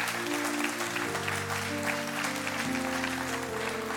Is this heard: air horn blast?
no